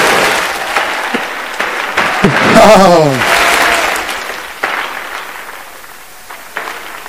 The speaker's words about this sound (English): Oh, somebody clap their hands and just thank them.